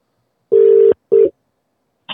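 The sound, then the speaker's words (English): An outgoing phone call's ringing tone: one steady electronic burst, then a second that cuts off abruptly, followed after a short silence by a faint click as if the call connects. “Are you ringing now?”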